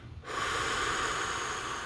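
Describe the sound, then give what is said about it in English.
A deep, steady exhale through the nose during simple breath work, breathing out all the air, a soft airy rush that starts abruptly and holds for well over a second, fairly loud, with no talking. “Begin by breathing out all your air.”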